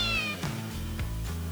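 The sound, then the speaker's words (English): A female cat meows in a drawn-out, wavering cry, loud, with a few short bursts breaking up the sustained tone over about a second and a half. No one speaks. “She's an interesting cat.”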